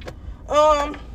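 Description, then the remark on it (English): Steady low road and engine rumble inside a moving car, with a brief voice-like tonal sound rising over it midway before fading back to the drone. “I don't really like recording in the car.”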